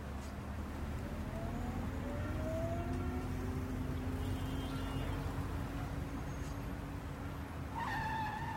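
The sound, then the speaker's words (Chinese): A car rumbles steadily along with rising engine whine as it hurries toward an airport, then near the end the tires let out a short, sharp screech as it brakes hard for a speed camera. No one speaks. “哎，你怎么急刹车啊？”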